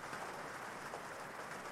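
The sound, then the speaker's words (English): Heavier rain pours onto a lake surface, a dense, steady hiss of countless drops spattering together with no pauses or voices. “And then the rain gets heavier,”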